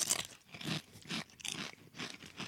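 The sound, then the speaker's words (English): Someone crunches on a crunchy honey-flavored, spicy snack, with a steady series of loud, crisp bursts roughly every third of a second and no talking. “That crunch is outrageous.”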